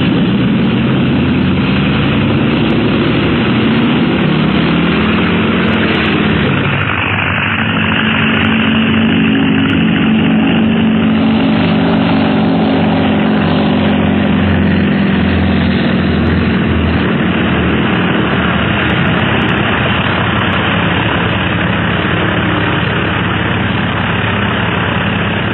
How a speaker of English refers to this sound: Pressed for time, Clint leaves Ying in charge of the ground crew, and we find the plane just about to take off on the flight to Tibet.